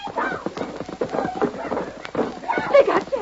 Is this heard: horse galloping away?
yes